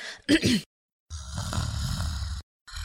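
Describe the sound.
A person imitates snoring: a short throaty inhale-like grunt, then a longer rattling, rumbling snore sound, fairly loud, with a brief pause and another start at the end.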